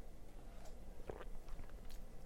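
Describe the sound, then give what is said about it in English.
Quiet sipping of warm tea from a travel paper cup, with a couple of brief, soft slurps and mouth noises over low background hiss, no talking. “Okay, so sip, sip.”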